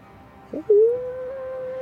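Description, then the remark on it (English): A short yelp-like burst leads into one loud, drawn-out howl that holds a steady, slightly rising pitch for over a second, with no talking. “And it's that moment you hear a loud howl.”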